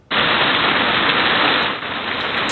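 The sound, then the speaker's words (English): Hail pelts down in a garden in Quesnel at 4 o'clock in the afternoon, a dense, steady roar of countless tiny impacts, loud, starting abruptly and continuing without pause; no voices are heard. “A global viewer sending this video in, showing hail pelting down in his garden.”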